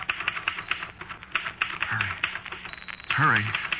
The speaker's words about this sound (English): And the typewriter clacked away.